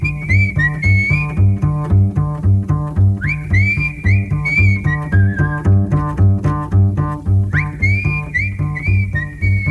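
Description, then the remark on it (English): A bright whistled melody with sliding notes rides over a steady, bouncing bass line with scatting and rhythmic backing, from a song also used in the 1982 film Cannery Row. The whistling is loud, returning in phrases throughout. “comes out in his little suit and whistles the, guess you would call, the melody.”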